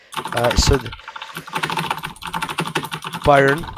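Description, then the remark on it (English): Rapid, continuous clicking of keys on a mechanical keyboard, fairly loud, heard over a voice chat during a quiz with push-to-talk turned off, with a voice briefly breaking in near the start and again at the end. “Keyboard ASMR right here.”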